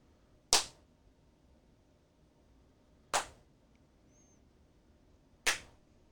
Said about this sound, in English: Clap like you mean it.